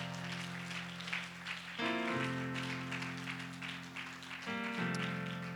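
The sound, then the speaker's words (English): A crowd claps hands steadily and continuously in praise to the Lord while sustained organ or keyboard chords play loudly underneath, shifting to new chords a couple of times. “Clap your hands one more time to the Lord and give Him praise.”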